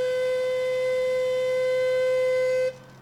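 A single long warning whistle blast at Shaft 22 of the water tunnel project in Brooklyn, blown once to warn people living in the apartments that a dynamite explosion is 5 minutes away, holds one steady, shrill mid-high pitch for nearly three seconds, loud and unwavering, then cuts off abruptly. No one speaks.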